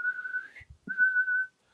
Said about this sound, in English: The soldier now blew upon a green whistle.